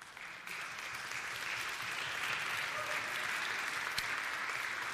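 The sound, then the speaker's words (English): Steady applause from an audience, a dense wash of many hands clapping that swells slightly after the opening and holds at an even, moderately loud level throughout, acknowledging someone's faithful service. “I was going to keep talking until someone started clapping, so Somebody got the memo.”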